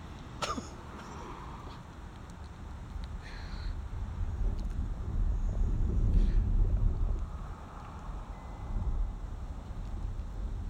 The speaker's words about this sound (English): Okay, wait for the truck.